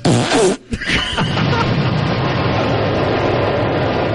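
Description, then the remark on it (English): A loud, heavily distorted fart recording: a short burst, a brief dropout, then a long crackling, buzzy rumble that sustains to the end, harsh and clipped like it was pushed through an overdriven amp. “Covid-19 Farts”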